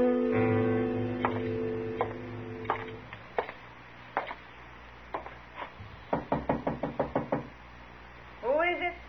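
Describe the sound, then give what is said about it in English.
Knocking on a door: scattered single knocks, then an insistent rapid run of about eight sharp raps, loud, with a brief voice sounding at the end. “Open the door”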